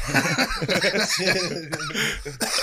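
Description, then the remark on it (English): Loud laughing and chortling breaks into a couple of sharp, harsh coughs near the end, the coughs bursting out between breathy, voiced laughter. “Stop coughing, dog.”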